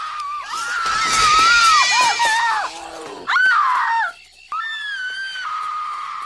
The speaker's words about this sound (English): this stuff's happening, all this where they've taken the stones and the children, and it's mostly her screaming. And I'm sure I saw, maybe it was on IMDb or Google, throughout the film she screamed 71 times. The biggest trouble with her is the noise.